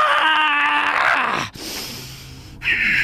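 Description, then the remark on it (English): A voice imitates the drawn-out scream of pain of someone impaled in the right shoulder blade, a strained, harmonic wail for about a second and a half, then a breathy, noisy stretch and a final shrill cry. “He lets out another scream of pain.”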